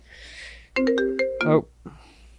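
A short electronic phone ringtone for an incoming call plays a quick melodic burst of bright, sustained tones, loud, ending abruptly after under a second, with faint background hiss before and after.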